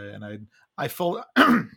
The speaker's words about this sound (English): God, I muted myself. I tried to cough it out.